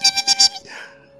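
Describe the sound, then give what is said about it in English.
Four rapid, shrill squeaks in quick succession, followed by a softer warbling trail that fades out. A voice imitating bat squeaks as a Foley sound effect. “Not so great on the old extra Foley sound effects. No. Of a cat. Meow! And some bats going...”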